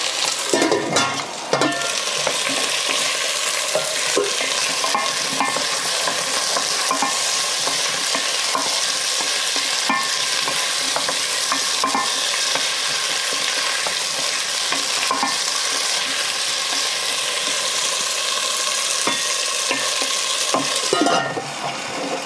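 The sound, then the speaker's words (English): Steady, loud sizzling of about 2.5 cups of cubed red potatoes frying with onions in ghee in a stock pot, with repeated scraping and clinking as the mix is stirred throughout. No one speaks. “I'm going to go ahead and throw them into the pot with the onions.”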